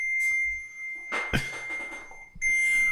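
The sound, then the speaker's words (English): A microwave's finished ding rings out as a steady high-pitched electronic tone, broken midway by a dull thunk and clatter, then sounding again more strongly near the end. No one speaks. “What the fuck did you just call someone's microwave that was done?”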